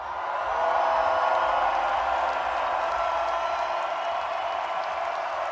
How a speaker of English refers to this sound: As you peek your head out, Womberbash, you're the first one to make an appearance and the crowd suddenly erupts into cheers.